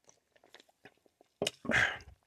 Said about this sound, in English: Because the reason why I say that is, hold on, let me take a sip real quick.